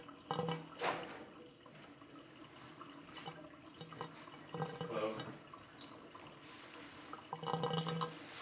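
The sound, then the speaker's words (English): Water runs steadily into a bathtub, including the drain, a continuous splashing rush with scattered drips and gurgles, moderately loud, with no talking over it. “Running Water, Bathtub, Including Drain”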